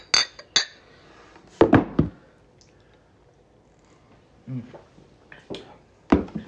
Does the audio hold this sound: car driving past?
no